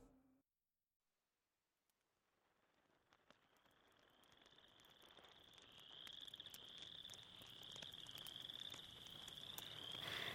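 A dense chorus of frogs croaking and trilling outdoors around a campfire after a concert, starting from near silence and steadily swelling louder over several seconds into a continuous, shrill, pulsing din with no voices.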